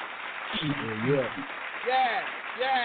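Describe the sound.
An audience applauds a guest being called to the stage. Steady, dense applause runs throughout, with voices rising over it in short bursts like cheers or calls, moderately loud.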